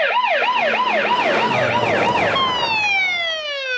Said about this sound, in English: Oh, all cop sirens sounded like this in the late 70s and early 80s. They just all sounded like this.